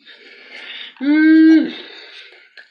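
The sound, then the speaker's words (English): A single loud yawn: a breathy inhale swells into a drawn-out voiced groan held for about half a second, then fades back into soft breathing. “How dare you yawn on the show?”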